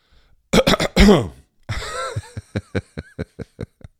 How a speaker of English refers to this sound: There's nothing I can do, and so I instinctively cough. And it was no worse than this.